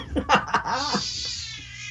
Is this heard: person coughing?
no